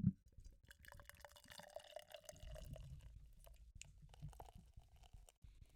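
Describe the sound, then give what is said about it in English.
Beer pours steadily into a glass, a soft gurgling trickle with faint drips and fizz, quiet, running for several seconds with no voices. “All right, so I'm going to pour it out. This is also another ASMR moment where I like to pour it out.”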